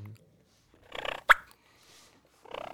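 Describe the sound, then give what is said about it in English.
A turkey call gives a few clucks and soft purring rolls: a short burst, a sharp single cluck, then quiet before another purring burst at the end. “What is that right there you doing? Cluck and purr.”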